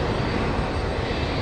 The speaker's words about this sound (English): The big Russian AN-225 looks like it's in position to take off. It's up to full power. And there it goes.